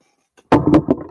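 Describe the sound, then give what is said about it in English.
A sudden thump and rattle as a microphone cord is bumped, followed by a couple of quick clattering knocks as a small object is knocked over and settles. “Sorry, I hit the mic cord there. Hopefully I didn't. I knocked my thing down, though.”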